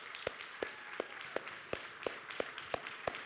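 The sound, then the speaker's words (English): A church audience clapping together for a member's birthday in a steady, even rhythm, with about nine sharp claps roughly three per second, fairly quiet and with no talking over it. “Can we just clap for her?”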